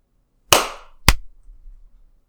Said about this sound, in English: I was a little early, but that's okay, I think. We've got three claps.